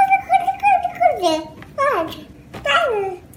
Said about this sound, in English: For example, in human infant babbling, they produce a syllable type, ba, ba, ba, ba, in a rhythmic way, then they switch to the next one, da, da, da.